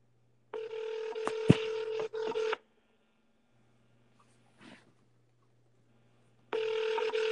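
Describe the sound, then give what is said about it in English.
An outgoing phone call rings through a handset: a steady electronic ringback tone sounds for about two seconds, goes quiet for several seconds, then starts again, with a faint click in the pause. “So we're going to see if he picks up his phone.”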